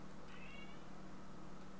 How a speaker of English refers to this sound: It's a cat outside the walls trying to get my attention.